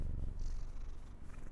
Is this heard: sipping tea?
no